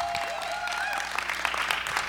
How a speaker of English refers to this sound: We'd like to thank everybody for coming out. You can applaud again. Thank you for coming out.